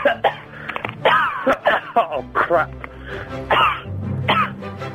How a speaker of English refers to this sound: That's all right, you have a cough, you go on, you're all right.